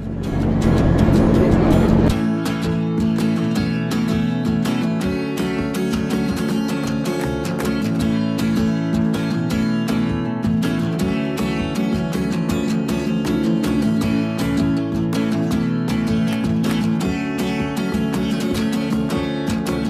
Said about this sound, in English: But going on, this part after this, there's a crescendo that comes in, and then it gets louder and louder, and you hear a guitar effect, and he's playing the guitar, and it's getting louder and louder, and then the train in the background.